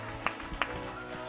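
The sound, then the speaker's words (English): An audience claps hands in praise of the Lord, with two sharp, loud claps standing out above a steady low rumble of crowd noise. “Somebody give the Lord a hand clap of praise all across this house.”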